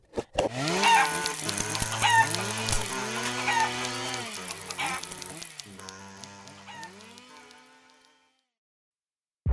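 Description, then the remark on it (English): Chicken clucking and squawking amid a loud, chaotic jumble of buzzing, wavering tones and clatter from a box holding a chainsaw, a chicken, pop rocks, a typewriter and kazoos, running continuously for about eight seconds before cutting to silence. No one speaks. “I've put into this box a chainsaw, a chicken, some pop rocks, a typewriter, and a few kazoos to produce quantum uncertainty.”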